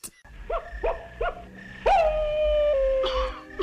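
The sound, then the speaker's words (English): A cartoon wolf howling at the moon gives three short rising yelps, then launches into one long, loud, sustained howl that wavers and breaks roughly near the end as it has an asthma attack and starts coughing; no talking. “Then a very, very badly drawn cartoon wolf that's howling at the moon. And then halfway through his howl, has an asthma attack.”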